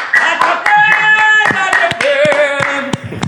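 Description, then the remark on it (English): Hands clap roughly ten times in a loose, uneven rhythm, each clap a sharp crack, while a steady, slightly wavering musical tone hums continuously underneath. “I'm going to clap for you.”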